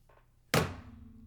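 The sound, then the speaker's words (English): A single heavy thud of a body landing on snow-covered ground after coming down from a tree, sudden after a quiet moment, followed by a low, lingering rumble as the impact fades. “It's going to hurt when I hit the ground.”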